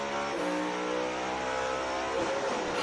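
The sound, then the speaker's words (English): A race car engine screams at full throttle, heard on board as the car drives at speed without braking, a loud, steady, high-revving roar that climbs briefly in pitch and then shifts near the end, with no voices. “He was going 112 kilometres per hour faster than any other car because he didn't have to brake.”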